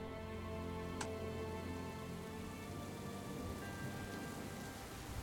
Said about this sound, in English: As we make our way up to the storyteller's campsite, the rain is coming down hard. We can hear thunder and lightning out in the distance.